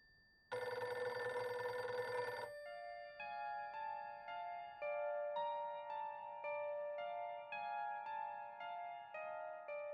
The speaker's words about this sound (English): And when I walked into the house, immediately I heard my phone's old-fashioned ringtone coming from my bedroom at the end of the hall.